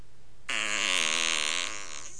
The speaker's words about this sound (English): There you go. Simple as that. You hear the air at the end of that release? That is just amazing, isn't it? Such realistic. Such realistic farting.